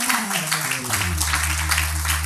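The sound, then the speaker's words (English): An audience claps in a dense, steady burst of applause, with low sustained keyboard tones sliding downward and then holding underneath. “I didn't ask you to clap, but if you clap, can you clap as if your applause is not on trials?”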